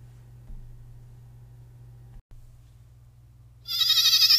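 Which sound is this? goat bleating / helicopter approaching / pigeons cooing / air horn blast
goat bleating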